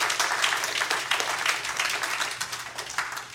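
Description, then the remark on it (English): A crowd claps steadily throughout, a dense, sustained patter of many hands at moderate volume with no pauses. “You can still clap.”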